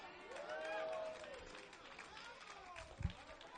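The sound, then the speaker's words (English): A few scattered claps from an audience break through a murmuring crowd while someone talks, with one sharper clap standing out close to the end. “I only got a few claps, Lord Jesus.”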